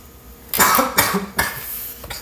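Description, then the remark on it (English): A couple of harsh coughs in quick succession, the first burst the strongest, followed by a softer trailing cough, with no talking. “That was a cough.”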